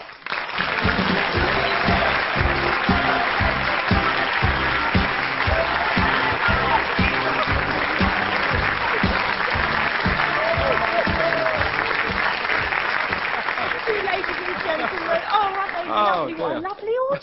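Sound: studio audience applause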